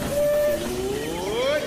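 The Disneyland Limited train of the Disneyland Railroad departing on a grand circle tour of the Magic Kingdom: a tonal, harmonic whistle holds a steady pitch, then bends slowly upward over a continuous low rumble, lasting under two seconds.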